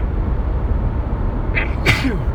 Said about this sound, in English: I didn't mean to sneeze like that, but I'm gonna edit that out.